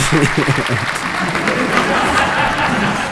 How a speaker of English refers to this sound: But so I'm here, and now I'm going to try asking some questions to the AI. So round of applause for ChatGPT.